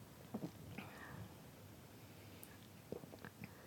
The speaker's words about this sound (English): She's putting it to her lips. Here she goes. She's drinking some sips. She's drinking the sips.